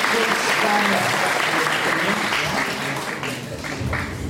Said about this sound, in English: No, that's the first time we've had some reception children involved. I think they need a special round of applause.